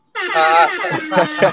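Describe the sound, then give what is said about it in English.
A loud air horn sound effect blares in a long opening blast followed by a quick series of shorter honks, bright and brassy, standing alone. “I need to give you an air horn for that gem drop you just threw.”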